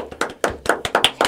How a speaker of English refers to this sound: Give it a real applause.